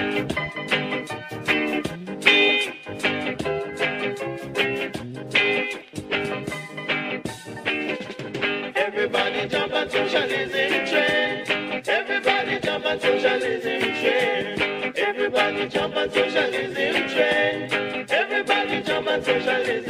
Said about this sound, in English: And now we go to a musical break.